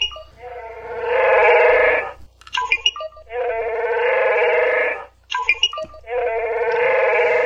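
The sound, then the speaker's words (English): An electronic toy creature's roar, triggered by scanning a tiny green chip with a reader, plays three times in a row, each a loud, buzzy, bleating growl about two seconds long, separated by brief clicky electronic chirps. “Disappointing that it's only one roar.”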